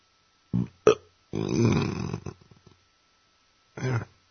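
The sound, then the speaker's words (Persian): A loud, drawn-out burp after drinking soda rumbles for about a second, framed by a few shorter, choppy belches before and after, with no talking. “با نوشابه خوردم آروغ زدم ببخشید.”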